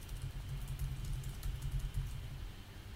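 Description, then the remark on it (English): Faint, rapid clicking of keys on a computer keyboard as someone types out tweets, scattered irregularly over a steady low rumble, with no one speaking. “Right, if you hear typing, that's me firing off the tweets.”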